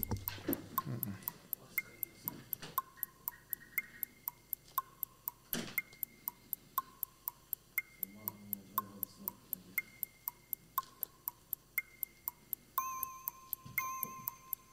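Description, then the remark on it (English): A 30-second timer in a letters word game ticks in a steady, brisk rhythm of sharp clicks, with a soft, plinking electronic melody of short tones running beneath it and no talking. “Now, when you get the last one, the timer will start.”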